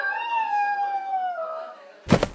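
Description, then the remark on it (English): A trainee space dog, Malaya or Malishka, lets out one long, steady howl that slowly sags in pitch over about two seconds as it is thrown out of a window by Dr. Yazdovsky to prepare for zero gravity, then cuts off into a brief, noisy thump. “Here, he can be seen preparing trainee dogs Malaya and Malishka for the effects of zero gravity by throwing them out of a window.”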